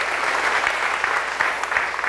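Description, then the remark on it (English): A short burst of steady applause, many hands clapping in a dense, even patter with a few sharper claps standing out, holding at a moderate level throughout. “Sure, we can clap for them.”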